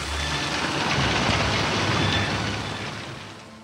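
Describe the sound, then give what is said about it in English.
Hard rain of a beginning cyclone pours down in a dense, continuous hiss with a low rumble underneath, steady and fairly loud throughout, easing slightly toward the end. No voices. “Then the wind increases. The rain begins, small and hard.”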